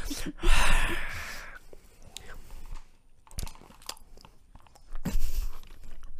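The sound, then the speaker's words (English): A noisy slurp of bubble tea through a straw, followed by soft wet chewing and small clicks, then a second slurp near the end; no one speaks. “Just sips bubble tea in dissatisfaction.”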